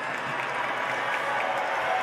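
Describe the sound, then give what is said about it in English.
A large crowd filling a church roars and cheers in a dense, steady wash of noise, with clapping mixed in, sustained and loud for the whole stretch without a break. “And they're all cheering.”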